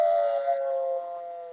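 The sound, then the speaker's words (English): A woman imitates a wolf howl by blowing through cupped hands, producing a steady, hollow, whistling tone that holds one pitch for over a second and fades slightly at the end, with no talking. “And that is how you do the wolf sound. Yeah, she does it with her hands.”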